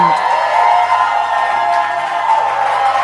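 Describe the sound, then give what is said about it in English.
An audience at a church service celebrating the pastor's birthday shouts and cheers in a dense, steady roar of many voices, with whoops rising above the crowd noise and clapping mixed in, loud and sustained throughout. “I was expecting a louder shout and a clap.”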